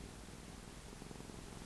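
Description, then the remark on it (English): A sleeping cat purrs steadily and softly, a continuous low rumbling hum with a gentle pulsing rhythm and no other sounds or voices. “Phew, the cat really found that interesting.”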